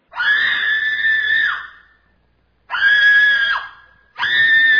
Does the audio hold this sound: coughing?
no